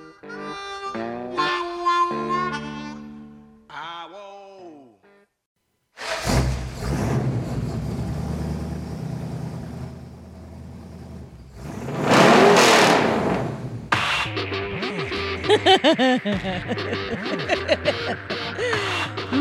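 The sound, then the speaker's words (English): A car engine rumbles, then revs hard in loud, rising bursts, following a short tonal musical opening and a brief silence. “revving it up.”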